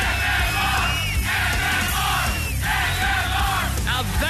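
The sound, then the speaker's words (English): A large crowd cheers and yells loudly and continuously, a dense roar of many voices with shouts and whoops rising out of it in waves. “What I call a crowd, ladies and gentlemen.”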